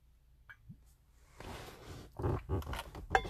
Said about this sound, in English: I didn't fart. That was my... I just rubbed against the leather. I hate... Okay. Not hate. I just don't like leather, like, interiors. Like, this isn't even leather. This is, like, more that soft leather.